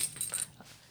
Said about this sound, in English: Okay. Getting out my bottle opener on my keychain. I have the sour. Clink, clink.